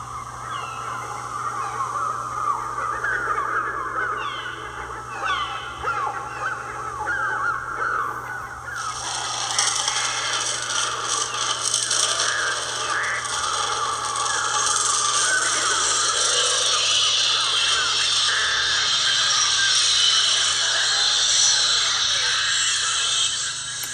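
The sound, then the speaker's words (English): A dense, continuous chorus of harsh crow-like bird cries and screeches from the opening credits of a 1963 film, loud and overlapping with no voices, swelling suddenly into a thicker, shriller flock partway through and staying intense to the end. “We are listening to the opening credits of The Birds, Alfred Hitchcock's next film after Psycho, released in 1963.”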